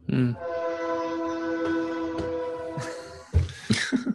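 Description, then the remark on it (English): A loud, sustained train horn blares for about three seconds, its steady harmonic tone holding, then cuts off; a brief clattering burst of rail noise follows at the end. “Give me an extra honk there.”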